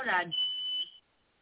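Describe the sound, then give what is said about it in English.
A single shrill smoke detector beep, a steady high-pitched tone lasting just over half a second, sounds right after a brief burst of someone talking, then cuts off into quiet. “Is that a smoke detector? Yes.”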